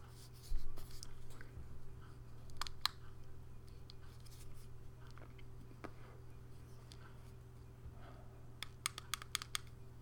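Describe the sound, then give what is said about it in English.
Small, sharp plastic clicks from a vape pen's slide as it is turned on, scattered irregularly and then bunched into a quick cluster near the end, over a low steady hum with no talking. “You may hear a slide clicking every now and then, ladies and gentlemen. It's me turning on the vape pen.”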